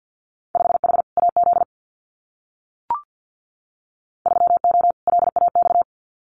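Very fast Morse code at about 50 words per minute sending Winter Field Day exchanges, a steady mid-pitched tone keyed in rapid dots and dashes, in two bursts split by a pause with one brief click.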